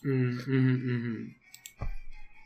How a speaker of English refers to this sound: And I have finished typing.